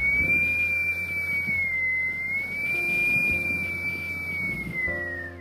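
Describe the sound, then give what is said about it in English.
Wind blows with a steady, high whistling tone that wavers gently in pitch for several seconds over a constant rushing, rumbling bed of noise. No one speaks. “The wind started to blow.”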